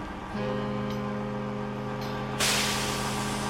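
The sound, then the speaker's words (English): A bus engine idles with a steady low drone while the bus loads passengers, then a loud, sharp hiss of air brakes bursts out near the end and keeps going. No one speaks. “The bus loads.”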